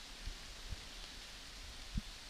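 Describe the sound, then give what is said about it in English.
Rain falls steadily outside as a soft, even hiss, fairly quiet, with a few dull low taps scattered through it, heard from just inside where it is dry. No one speaks. “But the birds don't care that it's raining.”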